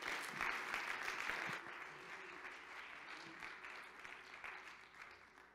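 An audience claps their hands to the Lord in a dense, steady burst of applause, louder at first and then settling into a softer, continuous patter with no voices over it.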